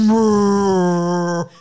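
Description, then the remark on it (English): A voice imitates a deep foghorn, like the SpongeBob foghorn sound effect, with one loud, steady, droning blast lasting over a second, its pitch sagging slightly before it cuts off abruptly. “It's like the SpongeBob foghorn sound effect.”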